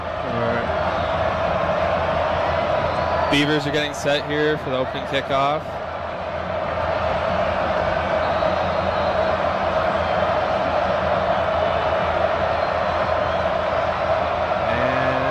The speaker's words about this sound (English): Crowd continuing to roar.